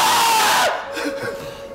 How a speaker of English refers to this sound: You both just screamed in my direction. I got double the yellings. Double the screamings.